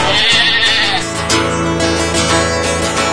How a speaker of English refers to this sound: Ah, the bleat and the meat of sheep to practice our manlyhood.